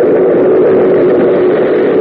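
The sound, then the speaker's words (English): A subway train thunders through an adjacent tunnel, a loud, steady, dull roar with a low mechanical hum running through it, continuous for the whole stretch with no voices. “At intervals beyond one wall of the tunnel, a subway train thunders through an adjacent tunnel among the world with a dull, clattering rumble.”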